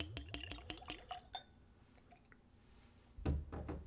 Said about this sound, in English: So let's have a little pour. I will say the Chambord bottle is a bit difficult to hold one-handed. So I'm going to try not to drop this, but okay, I've got it. Here's a little pour.